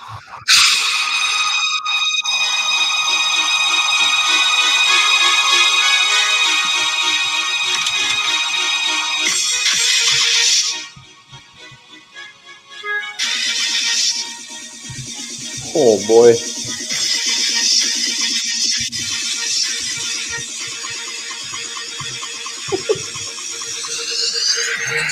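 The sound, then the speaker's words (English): A song with a flute plays steady, sustained high tones, cuts out briefly partway through, then resumes at similar loudness while a man speaks a few words over it. “I can hear the flute.”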